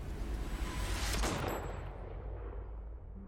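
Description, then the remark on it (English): A single gunshot booms out and rolls away in a long, echoing rumble over a low, steady background, with no one speaking. “the gunshot.”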